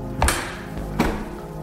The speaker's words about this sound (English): There was a push on the door, and a slam. Huh? Anybody in there? I held my breath, and the thing outside started pulling the door off of its hinges.